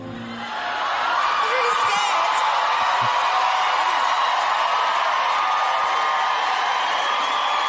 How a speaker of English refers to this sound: And this is live, by the way. Yeah. So nice start. Song over. Applause, applause, applause from the crowd.